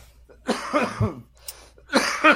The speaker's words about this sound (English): Hold on, let me cough real quick.